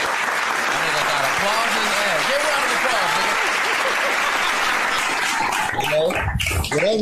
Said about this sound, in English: Applause, man.